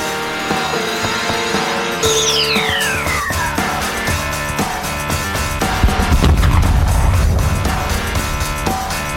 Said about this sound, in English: Boom. I was blasting this in the car and the explosions actually made me laugh out loud. Yeah. Just that extra touch.